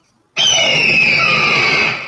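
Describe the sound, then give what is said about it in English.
A single loud, piercing phoenix screech bursts in after a brief silence and holds steady for nearly two seconds, shrill, fading slightly at the end. “The Phoenix scream? The best Phoenix screech, Yeah.”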